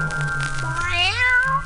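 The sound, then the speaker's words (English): A single drawn-out meow from a little black cat walking across the path to a front door, rising and then falling in pitch over about a second, over a steady low background hum. “But that's exactly what the ghostly trio did the day a little black cat walked across the path to my front door.”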